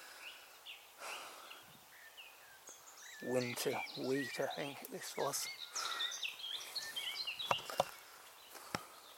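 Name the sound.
blackbird singing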